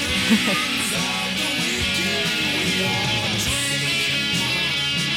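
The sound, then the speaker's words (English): Loud, dense rock music plays steadily during a guitar solo, with a lead guitar line bending and sliding over a full band mix of drums and distorted guitars. No voices are heard. “this song back rocks. For the solo.”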